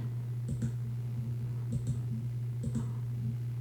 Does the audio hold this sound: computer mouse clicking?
yes